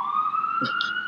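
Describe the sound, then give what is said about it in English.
An emergency vehicle siren passing outside in a downtown area wails in a steady, high, clear tone that slowly rises in pitch, sustained throughout at moderate loudness, with a brief burst of voice partway through. “I thought that siren was you whistling.”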